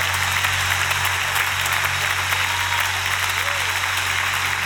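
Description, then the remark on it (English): A large group claps steadily, dense overlapping hand claps forming a continuous loud wash of applause with a low hum underneath, no clear rhythm and no speech over it. “I'm gonna need somebody to clap your hands.”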